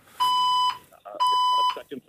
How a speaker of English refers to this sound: a crazy alarm that started going off in the building a little while ago